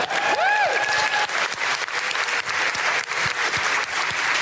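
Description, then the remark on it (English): Sustained audience applause for a singer, a dense, steady wash of many hands clapping throughout, with a brief whistle-like cheer rising and falling near the start. “Can we just have another round of applause for …?”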